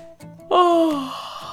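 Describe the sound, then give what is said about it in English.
A voice imitates a big yawn by the story character Humphrey: one drawn-out, breathy vocal sound that starts abruptly, slides down in pitch and fades over about a second, fairly loud with no talking. “Humphrey yawned a big yawn.”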